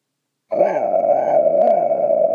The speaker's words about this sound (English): I got a Bobcat growl. Let's see. Maybe.